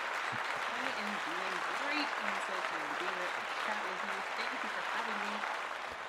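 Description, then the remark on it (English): Steady, dense applause from a crowd welcoming a guest to a show fills the whole stretch, a broad crackling wash of clapping with voices murmuring and talking faintly underneath. “Oh, the crowd still loves you.”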